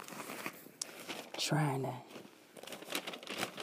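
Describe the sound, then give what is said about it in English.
Crisp rustling and crinkling of papers being shuffled, with steady scratchy bursts throughout and a brief hummed or murmured voice partway through. “I shuffled a lot of papers.”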